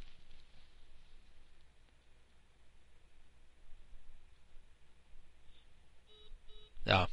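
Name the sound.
cell phone dialing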